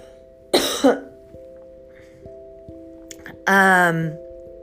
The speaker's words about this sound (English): Excuse me, I'm gonna have to cough.